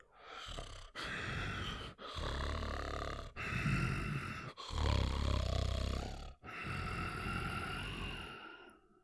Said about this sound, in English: Just then, a fat, scaly Hartle leg came into view and stopped. The creature looked me over for a very, very long second, breathing heavily.